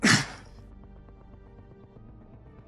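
human body sound, man coughing

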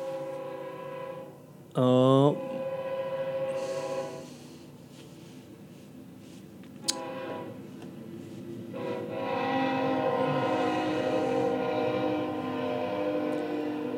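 vehicle, passing train with horn

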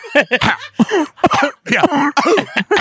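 human body sound, cough into the microphone

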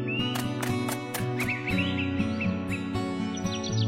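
bird, bird chirping

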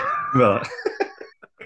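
animal, dog whimpering and yipping

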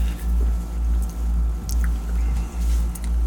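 food or drink, sipping sparkling water

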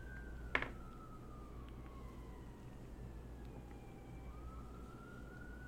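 vehicle, emergency vehicle siren approaching

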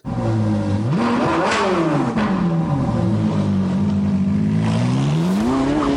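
vehicle, car engine revving

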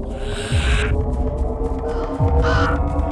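bird, raven cawing

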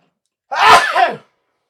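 human body sound, sneeze

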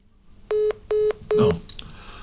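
fault, phone call cutting off

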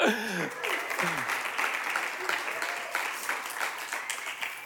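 crowd, audience clapping hands

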